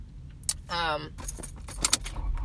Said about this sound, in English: It would help if I turned on my car. I am leaving the beach.